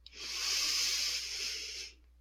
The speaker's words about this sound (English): beginning by taking a few full breaths, breathing in slowly and fully.